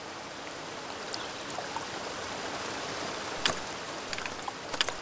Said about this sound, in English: They're crossing a stream of rushing water, stepping on ice-covered rocks